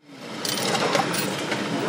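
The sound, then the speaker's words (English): Ambience from inside a moving city bus on the 15L route: a steady engine rumble with rattling and clattering layered over it, holding at an even, moderate level throughout with no voices. “For Jovan Mays, this city bus isn't just public transportation.”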